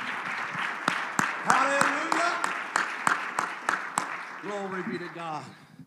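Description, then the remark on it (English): An audience claps hands unto the Lord in a steady, rhythmic beat, sharp loud claps repeating about twice a second, while voices call out and sing over the clapping. “Oh, clap your hands unto the Lord, everybody.”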